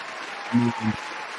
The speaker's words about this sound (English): And I think that deserves some applause, man. Let's give it up for our guy.